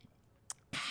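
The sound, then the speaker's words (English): Someone chewing food, taking another bite for ASMR: a small wet click, then a sudden loud, crackly crunch of a bite that fills the end of the moment. No one speaks. “Let me take one more grub. Hold on, guys. ASMR.”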